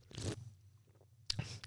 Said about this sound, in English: I'm not a big tropical fruit fan, but we'll see. So, first sip.